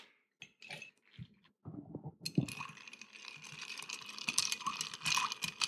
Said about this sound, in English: To the mixing vessel, I'm going to add the ice.